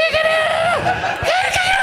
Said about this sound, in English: I wish that that movie had more of that kind of hysterical screaming.